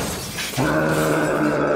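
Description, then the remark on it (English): A loud burst of shattering glass as the Nemesis crashes through the glass and into a room, then gives way abruptly to a steady, low droning tone that holds to the end. No one speaks. “The Nemesis crashes through the glass and into the room.”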